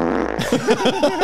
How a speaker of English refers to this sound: And I put that on my soundboard because that is part of my work. Farts are my brand.